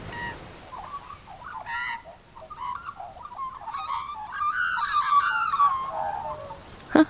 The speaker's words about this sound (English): Did you hear that? That's the call of a black-backed magpie. A magpie making sure all the other birds know that this tree belongs to him and his family. There he goes again.